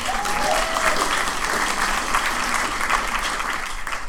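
Sustained applause from a stand-up comedy audience, a dense steady wash of many hands clapping at a fairly loud, even level throughout, with a faint brief whistle near the start.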